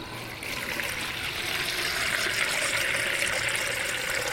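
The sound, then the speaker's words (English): Water runs steadily from a tap, a continuous splashing hiss that starts slightly quieter and holds at an even level for several seconds, with no voices. “But if you've ever turned on a tap and experienced brown water coming out, then you'll know that it's less than appealing.”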